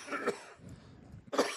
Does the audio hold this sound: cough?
yes